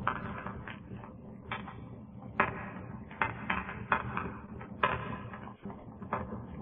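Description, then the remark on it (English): A phone book burning: steady, dense crackling and rustling with sharp louder snaps breaking through every second or so, no voices. “That was someone burning a phone book.”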